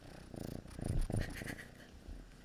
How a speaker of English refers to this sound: but do y'all hear that? Yeah, do y'all hear the purring? Oh, my gosh. Kitty boy, get some ASMR up in her. Get over here.